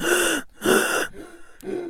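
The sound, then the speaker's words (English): A voice demonstrates quick, shallow breathing: three short, airy breaths in a rapid, uneven rhythm, each a brief rush of breath with slight pauses between. “No, shallow breaths. Shallow breaths.”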